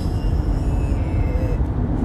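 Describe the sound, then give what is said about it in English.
A loud car exhaust rumbles as the car passes by, a deep, rough, steady roar that holds for about two seconds, with faint high tonal whines above it and no voices. “Damn, you heard that car. That shit's like a nasty fart.”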